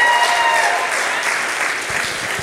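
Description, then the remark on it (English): A crowd applauds steadily, a dense wash of many hands clapping at an even, fairly loud level that eases slightly toward the end, with no voices standing out. “That's another reason to clap. Let's clap for that.”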